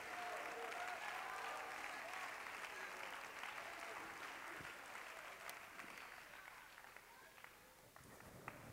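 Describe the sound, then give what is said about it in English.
An audience claps hands to the Lord in praise, a sustained, dense wash of applause that holds steady, then gradually thins and softens toward the end, with a few scattered louder claps and faint voices mixed in. “Every man, every woman, clap your hands.”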